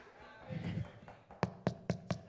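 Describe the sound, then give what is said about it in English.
A few soft taps lead into four crisp knocks on a glass tabletop, evenly spaced, imitating someone knocking at a door, with a brief murmur of voice just before them. “This is a glass table, so it doesn't do it as good.”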